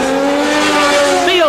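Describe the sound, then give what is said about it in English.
Gilles Villeneuve's Ferrari Formula One car screams past on his last lap of the 1978 Canadian Grand Prix in Canada, its high, steady engine whine holding loud for over a second before the pitch swoops sharply downward as it goes by. “Gilles Villeneuve on his last lap is almost home to his first Grand Prix win, the fifth Ferrari win of 1978.”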